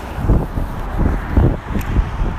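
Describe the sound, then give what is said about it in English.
Steady low rumble of street traffic on Portage Avenue with passing vehicles swelling and fading, heard outdoors while walking down the avenue, with some wind buffeting the microphone; no one speaks. “So chances are you can hear the traffic noise coming to and fro.”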